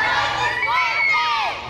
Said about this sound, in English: So if I yell pause, I need you to say my life is worth it. Can y'all say that loud? All right, so if I yell pause, what y'all gonna say?